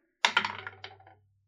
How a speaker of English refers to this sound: It's like I was rolling dice. I was rolling dice and didn't realize what you said.